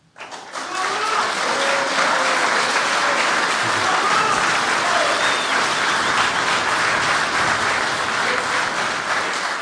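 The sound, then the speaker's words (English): Sustained applause from a large audience at the third and last 2021 International Brotherhood of Teamsters candidate debate, for the candidates who spoke, a dense wash of clapping that rises quickly and holds steady at full volume for several seconds, with faint murmurs and a few voices mixed in. “And can we give a round of applause for the gentleman who's been talking to us and what we've heard tonight?”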